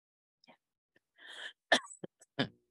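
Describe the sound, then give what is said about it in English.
A short burst of coughing: a raspy throat-clearing breath, then three sharp, dry coughs in quick succession, fairly loud against an otherwise quiet background. “Sorry, I've got a real cough now.”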